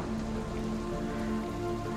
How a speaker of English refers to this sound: It's pouring rain.